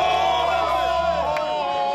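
A group of voices lets out a loud, sustained cheer together on a count of three, celebrating a Titans win, overlapping shouts and whoops blending into one steady roar for about two seconds.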